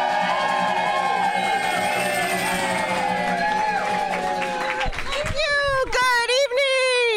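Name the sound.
audience applause and cheering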